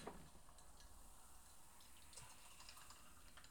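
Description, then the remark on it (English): Champagne pours steadily into a glass for a few seconds, a continuous fizzing splash with faint crackling bubbles and no voices. “You're good at pouring champagne.”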